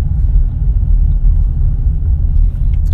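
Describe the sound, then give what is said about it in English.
A car's deep, steady engine rumble fills the space, heard from inside the vehicle idling in slow traffic, loud and continuous with no voices. “Thank you for joining me while I've been stuck in traffic.”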